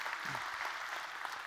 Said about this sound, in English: And Journey Church, I wonder if we could take a quick moment. Let's give them a great big hand clap and welcome them this morning. So good to have you with us today.